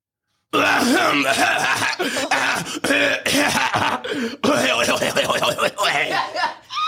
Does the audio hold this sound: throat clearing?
yes